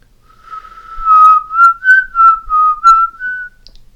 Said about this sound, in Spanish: Cuando el padre llega a casa, el muchacho está afuera, silbando.